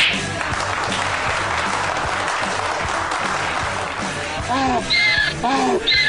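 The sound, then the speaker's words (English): A donkey brays loudly in several rising and falling harmonic honks near the end, after a stretch of dense, noisy crowd-like background. “What does a donkey have to do with it?”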